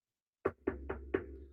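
Four knocks in a quick, steady rhythm, each a solid, slightly muffled thud like knuckles on a wooden door, heard fairly close with no voices.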